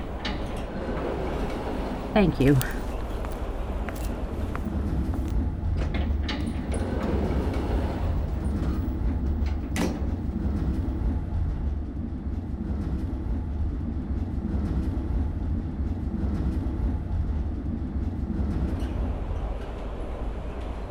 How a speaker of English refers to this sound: I know it sounds stupid, but it genuinely is kind of nice to step out of the car full of chatter into the tunnel where there's just wind and the sound of the train